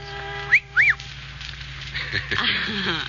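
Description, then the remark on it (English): Two quick, high whistle notes, each rising and falling in pitch, sound out loud and clear, followed by a voice speaking over a low steady hum. “Well, then you should have made the whistle shorter,”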